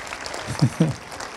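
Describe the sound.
A small audience claps steadily in a dense patter of applause, with a couple of brief voices calling out over it partway through.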